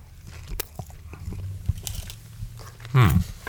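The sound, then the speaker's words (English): Biting and chewing of a soft, moist strawberry treat, with wet munching sounds and a louder crunchy bite near the end, heard alone without talking. “Oh yeah, take a bite, chew, think, absorb, enjoy.”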